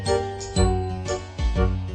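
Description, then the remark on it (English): Noddy's bright jingling bell, from the Noddy theme, rings out in two lively bursts over sustained ringing tones, fairly loud, with no voices. “Noddy, his jingling bell means he's the happiest little fellow in all Toyland.”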